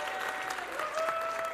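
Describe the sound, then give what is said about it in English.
An audience applauds two people called up onto the stage, a dense wash of many hands clapping at an even, moderate loudness throughout, with a few faint tonal notes sustained underneath. “If you guys would, give these two a huge round of applause.”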